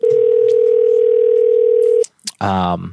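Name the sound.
telephone dial tone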